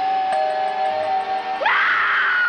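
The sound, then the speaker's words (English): A steady eerie tone suddenly swoops upward into a loud, piercing horror scream that holds at full strength until the end, with no talking. “there's a magnificent view of hell and a pool of blood heated by the violent energies of the still screaming dead.”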